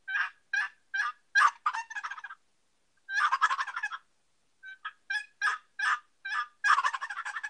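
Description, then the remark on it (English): A Woodhaven Real Hen cherry turkey call produces a steady run of coarse, deep gobbler yelps, then a loud rattling gobble, followed by more yelps. The sounds are clear, with no talking. “And a lot of times, and by the way, this is just a Woodhaven real hen, Cherry, but a lot of times you can do the gobbler yelps and just gobble.”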